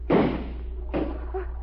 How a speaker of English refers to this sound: Yeah, then I'll open it. Look out inside. Get away from the door. I'm going to shoot the lock off.